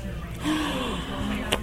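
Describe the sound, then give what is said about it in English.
A sudden breathy collective gasp from several people bursts in and holds for about a second, voiced, with a brief sharp click near the end. “A collective gasp.”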